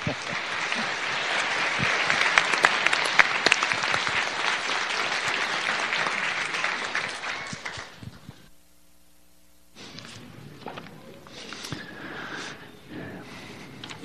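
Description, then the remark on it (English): A large church audience claps steadily in a dense, loud wash of applause for several seconds to celebrate work done, then it cuts out abruptly into near silence before scattered, quieter noise resumes. “Let's clap again.”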